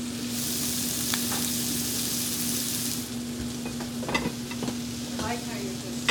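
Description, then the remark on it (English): Shallots, thyme and marjoram sizzle in a pan, steaming on top of the cooking food, with a steady, bright hiss for about three seconds, then quieter frying with a few soft scrapes and clicks of stirring. A low, constant hum runs underneath. “All right, so now we'll add our shallots, thyme, marjoram, and we'll let that other side cook, kind of steaming all of the herbs and everything on top, and then we'll whip it around to roll it in, about another minute and a half on this side.”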